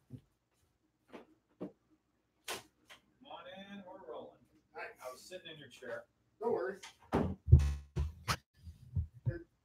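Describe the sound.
A few sharp, spaced-out knocks on a door, fairly close, followed by muffled voices and shuffling movement in the room.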